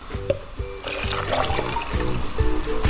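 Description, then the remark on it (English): Liquid trickles and splashes steadily into a container, a continuous watery pour with soft bumps and clinks as it is stirred, as 3 tablespoons of washing up liquid are mixed with 250ml of water and 1 tablespoon of glycerin to make bubble mix. No one speaks. “So mix 3 tablespoons of washing up liquid with 250ml of water, plus 1 tablespoon of glycerin.”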